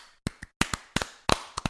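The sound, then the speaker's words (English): Crisp hand claps in a quick rhythmic pattern, about ten sharp claps grouped roughly in pairs, with no talking, clapping to celebrate Guy Fieri getting his star on the Hollywood Walk of Fame. “Boy, can we clap that?”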